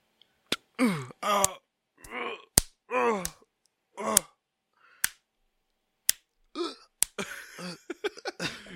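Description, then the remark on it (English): A man acts out pained groans and grunts in short bursts, as if held in a headlock and punched in the face, punctuated by sharp smacking thuds like punches, building to a rapid flurry of hits and strained cries near the end. “You are in the headlock. And the guy's punching your face.”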